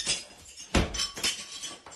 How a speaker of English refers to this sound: A warning from a Colorado Springs woman tonight after a contractor she hired smashed her bathroom shower that they had just remodeled.